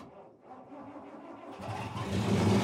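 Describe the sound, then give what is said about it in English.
An engine, started by Martin at sunrise, turns over and catches, its low rumble building into a louder, steady roar over the last second, with no voices. “The sun was just rising when we at last had made it fast, and Martin started the engine.”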